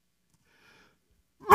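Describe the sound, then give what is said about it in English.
Near silence gives way to one sudden, loud sneeze, a sharp breathy burst that cuts off abruptly at the end. “I'm getting ready to sneeze, I think.”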